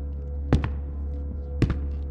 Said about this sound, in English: leans back in his chair as we hear footsteps approaching from the shadows.